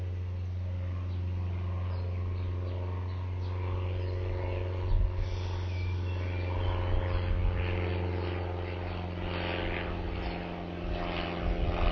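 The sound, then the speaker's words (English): A propeller airplane drones steadily overhead, a low continuous hum with a faint rising buzz, filling the whole stretch at moderate loudness with no other sounds. “I have a plane going overhead.”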